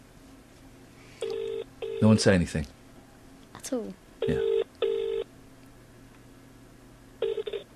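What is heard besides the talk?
telephone dialing and ringing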